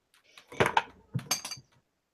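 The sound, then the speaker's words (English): Two quick bursts of knocking, a couple of sharp raps followed by a brief pause and then three more, with a slightly clinky, hard-surface quality and no voices. “I just knocked.”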